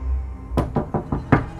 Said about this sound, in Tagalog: Tinungo ni Renz ang pinto ng CR at dito ay kinatok niya ang mga nandun sa loob.